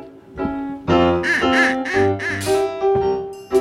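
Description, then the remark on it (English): A duck whistle quacks in a rapid, buzzy series of nasal honks, loud, with several bursts running together and no voices over it. “I'll be on duck whistle.”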